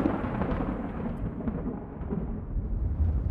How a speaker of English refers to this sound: The rain had begun to ease off, but the thunder and lightning were still raising a fuss.